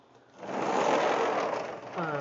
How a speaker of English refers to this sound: I'm closing the sliding glass door.